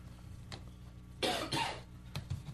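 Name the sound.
coughing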